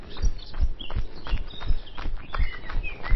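Faint birds chirp outdoors during a jog in short scattered calls, partly masked by steady rhythmic low thuds like footsteps or a heartbeat, with no voices.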